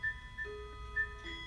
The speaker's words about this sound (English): and then the wall clock started chiming, so I was waiting for that to stop. And then I just stopped it and then played it back, and I'll show you. Well, you can listen to what happened. All right, there's the clock.